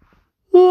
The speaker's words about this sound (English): excuse me for that yawn. I needed it.